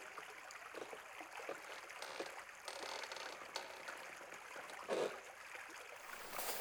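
River water flowing steadily, a continuous soft rushing wash with faint gurgles and a brief splashy swell near the end, fairly quiet and with no voices.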